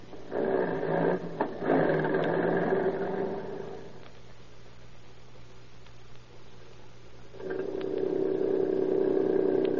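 A car engine runs steadily in a continuous mechanical drone, loud at first, easing to a quieter hum midway, then swelling again near the end. No one speaks.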